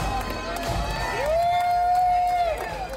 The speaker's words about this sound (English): It's the end of a long day. They walk off the plane. The Navy cadets are there. People are cheering. The band's playing. It's almost overwhelming.